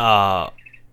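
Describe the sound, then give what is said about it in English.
A bird clock sounds its birdsong: a loud, buzzy sustained call with rich overtones, followed by a brief, faint trill of high chirps as it fades out. “There's Bird Clock. I was trying to give Bird Clock his moment in the sun.”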